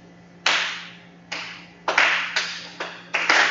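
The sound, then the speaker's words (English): A person at a church service claps their hands about eight times in an uneven rhythm, each clap a sharp, bright smack over a low steady hum, with no talking. “Let me show everybody what clapping your hands is.”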